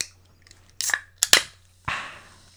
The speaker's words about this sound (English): Sorry, guys. I'm being very unprofessional because I'm thirsty. Oh, God forbid I take a fucking sip of water in this bitch.